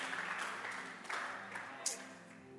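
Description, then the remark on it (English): An audience in a church claps their hands in a steady, dense patter, with a few sharper claps standing out, while voices carry on over the crowd noise. “Clap yes. your hands.”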